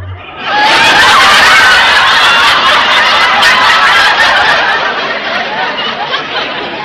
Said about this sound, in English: What in the world is Mac doing? You have just heard the frog's version of a wolf whistle. That's one for the book.